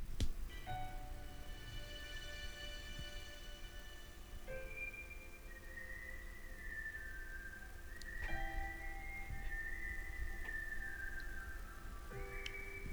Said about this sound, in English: melody of … whistling in the background